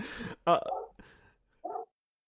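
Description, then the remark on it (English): A dog barks in a quick, irregular string of about four short, sharp woofs, each separated by brief pauses, moderately loud. “that dog has gone off just like it was last podcast.”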